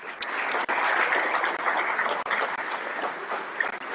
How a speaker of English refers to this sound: They're applauding right now at the floor. Woo-hoo! I don't know if you can listen. Can you listen? I'm clapping too.